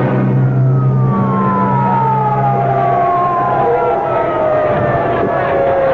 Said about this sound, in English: Now let that ambulance through.